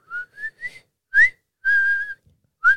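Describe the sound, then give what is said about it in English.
Someone whistles a short, jaunty marching tune: a few quick rising notes, a sharp higher note, then a long held tone and a final bright note, with no talking. “The song that they're whistling at the beginning of the episode is called Colonel Bogey.”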